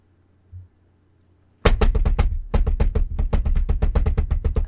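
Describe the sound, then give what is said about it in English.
After a moment of near silence, frantic knocking on a door bursts out: a rapid, unbroken string of loud, hard raps that keeps hammering for about three seconds. “Frantically knocking. Tap, tap at my door, yo.”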